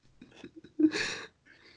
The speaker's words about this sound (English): Oh my god, I farted again and this one stinks. That one literally have no rights. Bro, can you smell that? Ugh. Can you smell that?